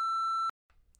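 A loud, steady censorship bleep lasts about half a second and cuts off abruptly, leaving near silence with only a faint rustle of background noise.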